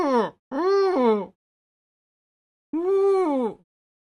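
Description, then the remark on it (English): A person imitates a seal with three loud, moaning vocal barks: two close together, then a pause of over a second before a longer, wavering third call. No words are spoken. “Is that what a seal sounds like”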